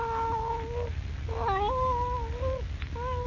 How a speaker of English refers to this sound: Leaping lizards. It's the cat.